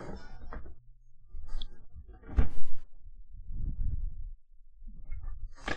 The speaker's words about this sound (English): Don't mind me. Just cat scratching at the door.